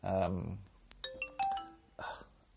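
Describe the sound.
A short electronic email notification chime plays on a phone being used for recording, a quick run of bright tonal beeps rising and stepping between pitches, clear, with a voice speaking just before and after it.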